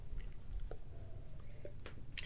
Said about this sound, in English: I'm going to have to take another sip to continue, but it was a really good sip.